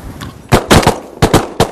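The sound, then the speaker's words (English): A quick irregular series of sharp, loud shotgun blasts, about six or seven cracks in under two seconds, over a low rumbling background with no voices. The shots are fired while duck hunting Eurasian wigeons and teals on a bay on the ocean, with the wind coming in hard. “Normally, shooting the size ducks like the Eurasian Wisions and teals that we're shooting at today, I would probably choose to shoot like a number four steel.”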